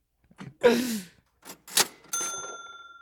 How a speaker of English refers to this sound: I thought that was gonna be a blop blop, but then it was a cash register and it caught me off guard. That was nice.